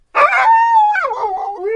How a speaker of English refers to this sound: She just like winds up, she just, you know, when she gets in this mode where she can't contain herself, she just sort of wiggles and often begins to bark.